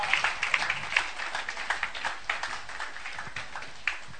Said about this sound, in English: If it's a good way, celebrate the Lord with a hand clap.